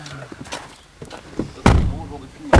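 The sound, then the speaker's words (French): A heavy car door slams shut with a solid thunk, followed moments later by a second car door slam, with faint shuffling and background chatter in between. “Il y a les portes qui sont fermées. Qu'il faut tu fermes la mandarine.”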